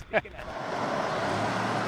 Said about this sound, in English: We nervously watch cars zoom around his cones with almost reckless disregard, but somehow they survive, at least until they're paved back over.